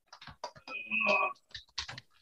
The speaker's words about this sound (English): Why do you sound like you're reaching really far away for your keyboard?